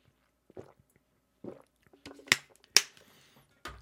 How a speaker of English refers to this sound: But let me drink some water real quick because my mouth is getting a little bit dry.